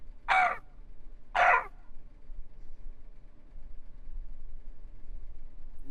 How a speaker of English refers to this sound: But you basically hear very little, save for the periodic sound of crows, essentially.